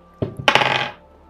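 Dice clatter onto a hard surface and come up a 3: a couple of sharp clicks, then a quick rattling tumble that settles within a second. Fairly loud, with no voices.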